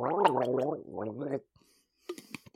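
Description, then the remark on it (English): Someone gurgles a mouthful of water with a voiced, wavering, bubbling tone for over a second, then falls quiet before a few short, wet splutters. “I have a mouthful of water.”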